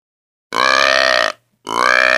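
Two loud, drawn-out blasts from a deer call blown with more air, each roughly a second long with a gap between, rich and buzzy with strong harmonics and a nasal, bleating tone. No talking.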